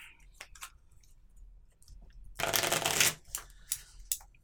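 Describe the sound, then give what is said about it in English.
A deck of playing cards is shuffled, with a loud riffling burst in the middle framed by softer snaps and slides of cards being handled and squared. “Let's shuffle these together.”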